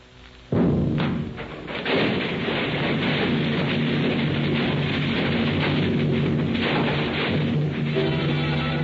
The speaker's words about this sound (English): The center of the Times building blows up. The force of the explosion snaps the girders supporting the second and third floors as so many toothpicks.